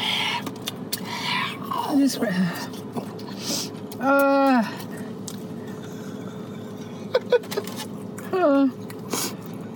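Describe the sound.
A person pants like a dog, with quick breathy huffs broken by a few strained, voiced gasps rising and falling in pitch, each lasting under a second.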